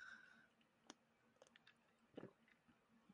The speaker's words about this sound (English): Hey, take a sip. Take a sip. Let's see what it tastes like.